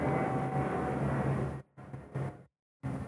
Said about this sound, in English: I'm just waiting for the plane to go by the way. Let it go. Just let this plane go.